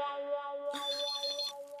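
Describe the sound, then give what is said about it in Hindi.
A phone ringtone for an incoming call plays clearly in steady, sustained electronic tones, with a brighter trilling melody joining partway through, fairly loud with no one talking. “वाह वाह वाह, आज बहुत बड़े आदमी का फोन आया मुझे, मेरे तो बाग खुल गए।”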